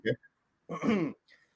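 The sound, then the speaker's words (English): A short, sharp cough, then a longer rasping throat-clearing with voiced, groaning tones and a faint breathy tail. No words are spoken. “Sorry, I'm coughing real quick.”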